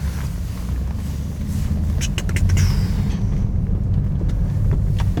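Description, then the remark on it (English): A car engine rumbles steadily, swelling louder midway as the vehicle pulls away, with a few sharp clicks and squeaks over the deep drone. “Let's get this vehicle in drive.”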